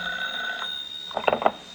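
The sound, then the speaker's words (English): A telephone bell rings with a steady, metallic tone, then a few short, louder jangling bursts near the end. Moderately loud, with no voices. “And 15 minutes later, he was dozing off when the phone rang.”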